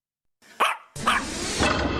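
Two sharp dog barks, fairly loud, about half a second apart; the second lands over a sudden wash of dense, noisy background sound that carries on after it.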